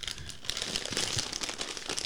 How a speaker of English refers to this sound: I'm opening a bag of chips because it's snack time.